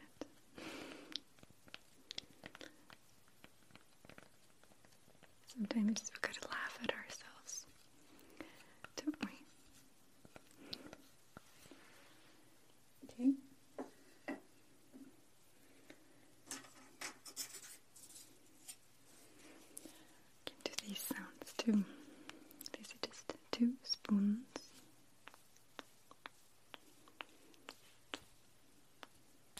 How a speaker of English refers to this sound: Wooden spoons, but they sound quite nice. Don't they?